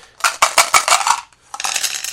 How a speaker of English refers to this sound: So there are instructions on how to do this on the Diceware webpage. And basically, we roll the dice again. Only need 4 this time.